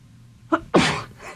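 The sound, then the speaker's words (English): A single loud sneeze in a dusty space: a short sharp intake followed by a bright, explosive burst of breath that trails off over about half a second. “Bless you.”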